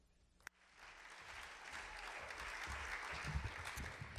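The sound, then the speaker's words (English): An audience breaks into applause after a brief pause for a performer's final piece, the clapping swelling quickly into a dense, steady wash that stays loud and sustained to the end, with no voices on top. “Let's keep the applause going”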